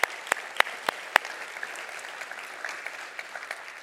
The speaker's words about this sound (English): A lot of clapping going on this morning. It feels like church.